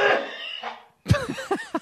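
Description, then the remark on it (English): A harsh, breathy, painful sneeze-like blast trails off, then after a brief pause come four or five strained, voiced bursts in quick succession, loud and unpitched at first, then groaning. “You kind of sound like my grandpa sneezing.”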